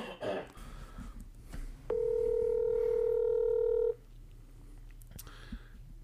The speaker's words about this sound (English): No, here, watch. I'm going to call someone.